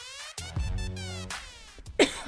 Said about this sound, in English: Sorry. You know this is my time to shine, and you decide to do the worst possible thing and cough.